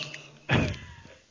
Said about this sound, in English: I just moved in my chair. Can I not move in my chair now? No. Obviously not, if it's going to just... I wonder if my mic cord was rubbing on my chair.